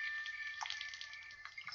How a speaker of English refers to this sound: sitting with a cold bottle of champagne, waiting. Pouring. Sipping. Slurping.